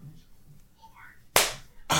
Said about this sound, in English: Don't ever clap hard again like that. That hurt you? That really snapped my ear.